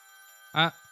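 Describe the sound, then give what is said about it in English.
A phone ringtone plays faintly as a steady electronic tone, with one short, louder tonal burst partway through. “What's that sound? Is that your phone?”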